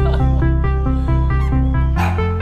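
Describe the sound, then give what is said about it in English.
Sounds of a pet dog named Dusty sampled and pitched into a short musical phrase in a song written for the dog, a quick series of loud, evenly spaced notes stepping up and down in a bouncy rhythm, with no one talking. “Yes, I sampled my dog.”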